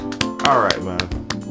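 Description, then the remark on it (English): A handful of sharp hand claps, about five or six, land at a loose, uneven pace while people talk and murmur underneath. “Clap it up, man. Clap it up, dog. Clap it up.”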